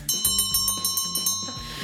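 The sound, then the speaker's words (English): A bright, rapid opening bell rings repeatedly in a steady pulsing rhythm, loud, with sustained metallic overtones and a low tonal backing underneath. “Opening bell? Question mark? Please save me.”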